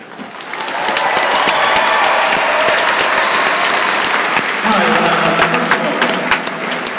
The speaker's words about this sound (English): Let the applause die down.